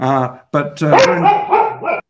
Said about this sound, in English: And your dog seems to be almost as verbose as me.